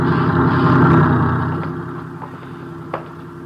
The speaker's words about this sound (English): Watch the truck